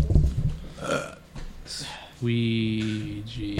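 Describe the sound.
After a few seconds of low, rumbling voice noises, a loud, drawn-out burp erupts, with a steady, throaty tone that holds for over a second.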